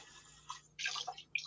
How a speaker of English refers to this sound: Who's pouring shit? That's me. I'm sorry. who's having a drink?